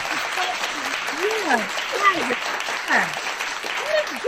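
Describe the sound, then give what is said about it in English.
Steady, dense clapping fills the whole stretch, with voices talking and exclaiming over it, the clatter of hands staying fairly even throughout. “Yeah, I don't have a bell, but the clap.”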